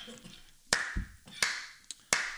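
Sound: hand clapping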